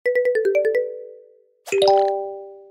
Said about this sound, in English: Hello? Oh, I think we froze. Oh, here we go.